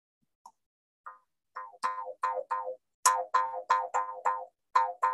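A simple tunable bamboo jaw harp twangs out a series of about a dozen rhythmic, boingy notes, each with a springy bending pitch, starting with a few soft plucks and growing louder, with no talking.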